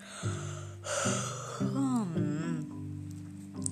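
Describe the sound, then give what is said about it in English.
A drawn-out vocal yawn, sliding up and then down in pitch, rises clearly over steady background music before trailing off. “When I'm tired, I yawn.”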